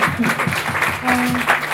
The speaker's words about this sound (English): Thank you. Thank you very much to come. You can applaud again